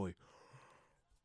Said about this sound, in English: Sorry, man, just waking up. You know, I wish I stopped yawning